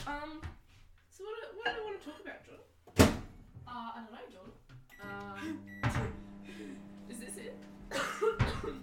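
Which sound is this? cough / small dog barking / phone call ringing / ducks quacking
cough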